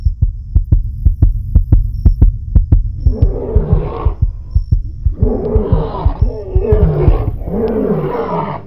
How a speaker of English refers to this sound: And about 5 seconds later, I hear, which is a male lion calling directly behind the tent. And I was like, oh, shit.